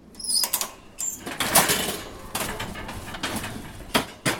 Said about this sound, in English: Noah and his sister arrive at the supermarket. The doors open.